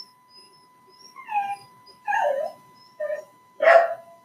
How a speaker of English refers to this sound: sorry if you hear my dog whining